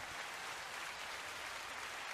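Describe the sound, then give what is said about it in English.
A muffled applause sound effect, played by clicking and holding a button: a dense, steady wash of many hands clapping that holds at an even level for about two seconds, with no voices over it. “Click and hold it. Muffled applause.”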